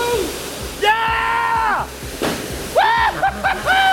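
A steady roar of a rushing waterfall fills the background, with splashing water mixed in, while drawn-out voices call and shout loudly over it as people watch jumps into the water.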